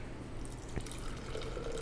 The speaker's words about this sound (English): Reminds me a little of a like a Guinness pour, you know? Yeah. So you kind of have to wait for it to get about halfway up and then you keep the pour going after that. And then kind of baby it all the way back up.